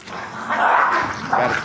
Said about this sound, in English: Got a puppy fight going on. Puppy fight? Oh, man. You know, it's funny. I never had two pups.